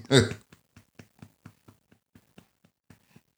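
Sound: baby burping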